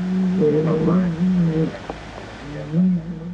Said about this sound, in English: A large cow had inched closer to the camera operator and was moaning so loudly no one could hear one another anymore.